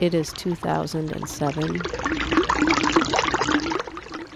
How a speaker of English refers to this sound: This is the sound of someone washing their car and wasting water on a small street outside my house, near the river, in Los Angeles, during the driest year on record.